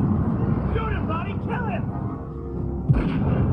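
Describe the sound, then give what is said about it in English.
A single sharp gunshot from a movie cracks out near the end, cutting through a steady rumbling background of noise and muffled voices heard earlier. “That was the worst shot I've ever seen in my entire life.”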